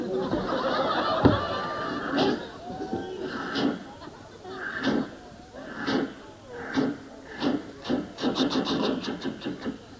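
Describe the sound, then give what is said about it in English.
A passenger train rolls along the rails with a steady clickety-clack that quickens toward the end, over a low rumbling hum, with indistinct voices murmuring in the background. “So here we go, all aboard the passenger train, I believe it is, instead of the freight train.”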